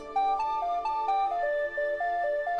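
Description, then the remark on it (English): Taint Hammer's BlackBerry phone chimes its text message alert, a bright electronic melody of about ten quick, evenly spaced beeping notes stepping up and down, clear, with no voices. “He must have dropped his phone in the commotion of the escape.”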